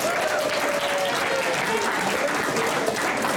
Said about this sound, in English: So you guys can give him a round of applause.